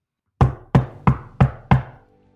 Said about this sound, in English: So you knock. Just making sure that he knows I'm coming. Yeah, so you knock.